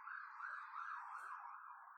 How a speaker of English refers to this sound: Oh, here comes an ambulance or something. Hold on. Hear it.